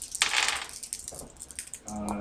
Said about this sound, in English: Tricky die. Don't know how that exists. I rolled a five and a seven. Two fives. Okay, I rolled a single four.